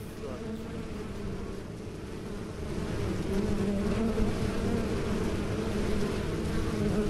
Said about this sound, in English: I was born in the dark of a beehive filled by the pleasant, uninterrupted buzz of the network vibrating like a cable under my feet, telling me who and where and when.